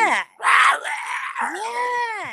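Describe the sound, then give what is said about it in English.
A loud, wild scream in a field recording, following a howl, rings out alone: a short harsh cry, a brief gap, then a longer strained shriek that wavers and slides downward before cutting off, like a death scream. “But there's one, after the very first howl that I recorded, there's another one that follows that is more like just a crazy scream. It's like a death scream.”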